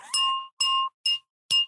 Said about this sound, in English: Y'all hear that glass? That thing is real.